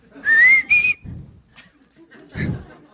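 Someone whistles a few bright notes of an old TV show theme tune, two sustained, slightly rising tones, then the whistling breaks off into quieter shuffling and a brief breathy burst.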